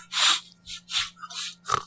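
A quick series of about five sharp nasal sniffs by Donald Trump during a debate, fairly loud, coming in a steady, restless rhythm with short pauses between them and no talking.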